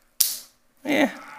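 Wooden pencils are snapped in a demonstration, first a single pencil, then two together, giving two sharp, dry cracks about half a second apart. The first is bright and sudden, the second fuller and more splintery, with no voices.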